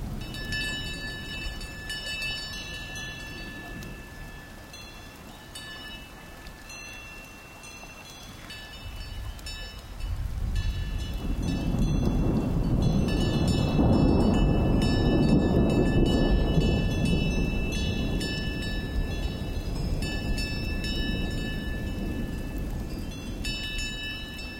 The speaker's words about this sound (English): We leave you this week high on an alpine mountaintop where a group of cows, their bells clanging in the breeze, seek refuge from an approaching storm. David Dunn captured the activity in the Swiss Alps near the town of Les Moulins.